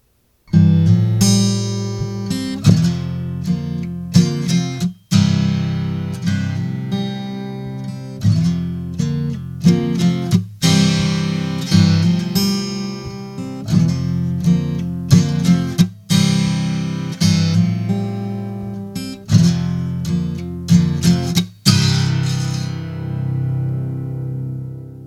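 A guitar riff played on its own, with repeated ringing chords and bright picked notes in a steady, looping rhythm, fairly loud, ending on a chord left to ring out.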